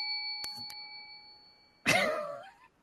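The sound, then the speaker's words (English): A quiz-bell ding, rung after a correct answer in a trivia quiz, rings out as a steady, sustained tone, broken by a couple of faint clicks, then cut off by a short, loud vocal burst like a cough. “I think something's wrong with our little ding, ding, bell thing there.”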